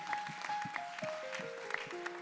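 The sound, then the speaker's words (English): An audience at Praise Tabernacle applauds its guests with steady, dense clapping throughout, while held organ notes step downward in pitch underneath. No one speaks. “Would you give a good hand of applause to all of our guests that are here?”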